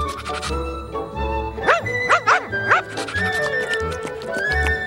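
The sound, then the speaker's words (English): A puppy yips and whimpers, a quick run of four high, rising-and-falling cries, with steady tones and low rumbling sounds continuing in the background. “Because I bought you this new cuddly puppy.”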